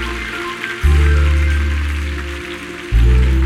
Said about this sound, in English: If you agree with that prayer, clap your hands and say amen.